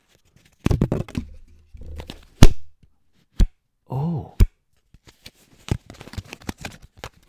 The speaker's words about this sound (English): That sounds like a piece of paper. Not exactly. It's a piece of paper. Is it... Oh. sounds slightly more... Is that you flicking it? So it's a piece of card. Is it a piece of card? Card. It is. It's a card.